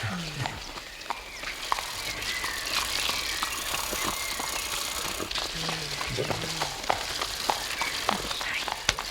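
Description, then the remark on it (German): Several horses' hooves clip-clop at a steady trotting rhythm as riders follow a straw trail to the edge of a forest, the irregular clatter continuing throughout against a busy outdoor background, with bicycles moving alongside. “Fahrräder und Pferde bleiben hier.”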